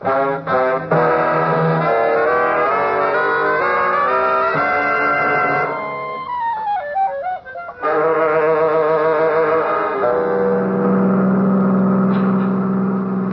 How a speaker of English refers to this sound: I wonder if he's the one drove away just now. Drove away? Did someone? Yeah. A car just went down the other drive.